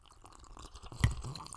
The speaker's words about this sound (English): When you cheers, it's eye to eye, and you take a sip. You can't not sip after cheersing.